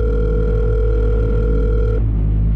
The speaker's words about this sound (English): He gets scared. He has to pull his phone out, dial, ringing.